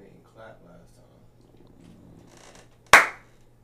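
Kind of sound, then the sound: human body sound, hand clap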